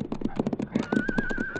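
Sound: horse neighing and hooves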